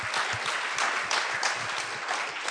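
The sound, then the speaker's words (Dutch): A church audience at a baptism service applauds steadily as a woman is invited to the stage, a dense patter of many hands clapping at an even, fairly loud level throughout, with no voices rising above it. “Laten we haar geweldig applaus geven.”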